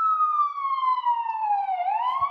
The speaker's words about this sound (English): you may hear sirens in the background.